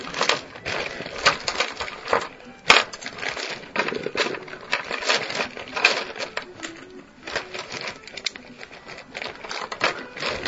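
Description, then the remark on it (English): Dice, including D10s, clatter and rattle continuously as they are handled and rolled, with rapid hard clicks and small knocks against one another and a surface, fairly loud, with no one talking. “You got to move the dice in the D10s.”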